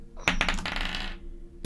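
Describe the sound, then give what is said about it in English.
Dice tumble across a hard tabletop, a quick burst of bright clacks that rattle and settle within a second, followed by one more sharp click at the very end. “Ooh, let me contest that with a perception. I should have got my dice out before.”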